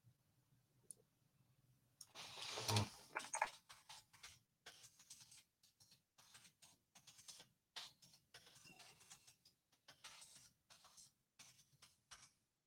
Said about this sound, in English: You guys can hear me typing. So let's see. Yeah, we'll pull up my channel here.